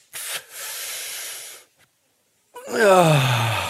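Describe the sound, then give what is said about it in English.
A long, deep, airy inhale, a brief pause, then a heavy exhale that turns into a voiced, falling sigh. Fairly loud, with no talking. “Breathing deeply, I mean, it would be better without the noxious chemicals and disgusting smell, but the breathing deeply is what it's really all about.”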